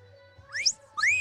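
A wolf whistle, two quick pitch sweeps: a short upward glide followed by a louder rising-and-falling swoop, with no talking.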